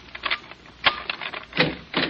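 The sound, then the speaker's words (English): A skeleton key, one of several being tried, rattles and clicks in a door lock as someone tries to open the door, a fairly loud run of irregular metallic clatters with a few sharper jolts, and no voices. “Uh-oh, we bought our skeleton keys, did we?”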